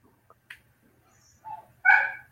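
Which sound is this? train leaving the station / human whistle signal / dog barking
dog barking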